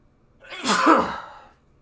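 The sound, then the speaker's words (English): A single loud sneeze from someone with allergies bursts out, a sharp breathy explosion that swells and fades within about a second, with no talking around it. “Bless you, man.”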